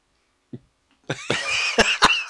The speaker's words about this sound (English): I don't know what you're laughing at. I coughed.